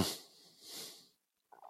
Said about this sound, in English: In case listeners didn't know what was going on, I was just narrating, not trying to cough shame you.